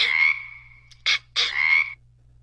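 A frog croaks three times, loud: a long drawn-out croak, a short clipped one, then another stretched croak. No voices accompany it.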